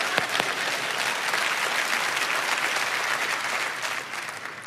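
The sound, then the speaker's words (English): A crowd applauds steadily, a dense wash of many hands clapping at an even level throughout, tapering slightly toward the end with no voices standing out. “Yeah, come on, clap.”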